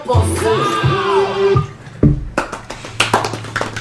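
After a brief swooping tonal sound, scattered hand claps break out, a small irregular burst of clapping from just a few people, moderately loud.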